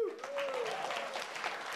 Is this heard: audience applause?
yes